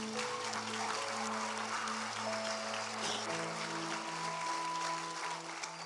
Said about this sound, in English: Sure, we can give him a little applause here.